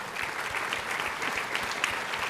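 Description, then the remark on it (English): Steady audience applause for the coaching clients in the audience, a dense crackle of many hands clapping at an even, sustained level with no voices rising above it. “The fact that you're that close and you're still holding on to your coach, let's give you guys a round of applause, seriously.”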